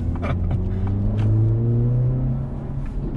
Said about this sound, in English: There's the auto rev matching. I actually really like that. I think that's a really cool feature.